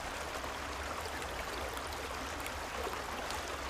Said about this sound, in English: Let the calming waters of the creek transport you to a place of tranquility and serenity. May the creek's gentle rhythm guide you to a restful night's sleep.